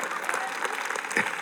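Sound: hand clapping applause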